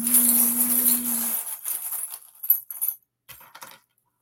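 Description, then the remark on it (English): Small metal pieces clatter and jingle together, like coins dropping, first as a dense jangle over a low hum, then as a few scattered, lighter clinks trailing off. No one speaks. “Yeah, your dad came through and he's dropping coins down to you.”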